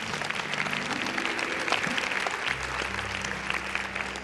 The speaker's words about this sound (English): Give him a hand clap, everybody.